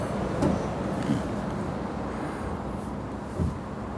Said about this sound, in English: The sounds of the coffee brewing. Yes. In the cup. Listen. Sounds like traffic. If you listen closely, you can hear a bus in the grounds.